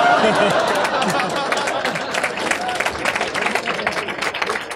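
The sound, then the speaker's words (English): A large crowd applauds steadily, dense overlapping claps forming a loud, continuous wash, with scattered voices and murmurs mixed into the clapping throughout. “My parents are here, so please don't let them know that when you're applauding, you're not applauding for me.”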